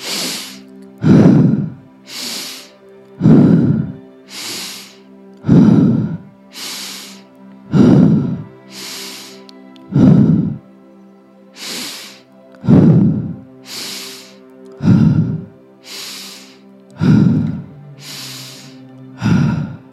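Steady cycles of forceful breathing in a guided breathing exercise, sharp hissy inhales through the nose alternating with heavy, voiced exhales out the mouth, about one full breath every two and a half seconds, loud with no talking.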